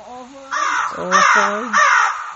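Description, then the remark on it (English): Crows caw three times in quick succession as a sound effect, loud and harsh, each rasping call lasting about half a second, with a voice faintly audible at the start and beneath the calls. “No, the birds are attacking.”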